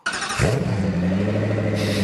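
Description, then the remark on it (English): A car engine cranks briefly, catches and starts, then settles into a loud, steady rumble with a rising rev toward the end. No voices, just the close, continuous engine noise. “Like we purposely wanted like a crappy startup sound.”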